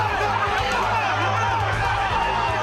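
A large fight crowd chants and roars together, a dense, loud wall of many voices holding steady throughout with no single speaker standing out.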